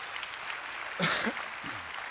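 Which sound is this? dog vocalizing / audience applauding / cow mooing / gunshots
audience applauding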